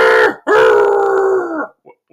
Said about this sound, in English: What the heck was that? Screaming dice, at least two of them.